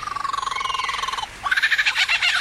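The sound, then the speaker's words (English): An Australian male lyrebird mimicking other sounds: rapid, buzzing, frog-like pulsed trills in two loud phrases separated by a brief pause, the second brighter and more rattling. “Australian male lyrebirds become masters of mimicry during mating season and will imitate just about any sound from their current environment”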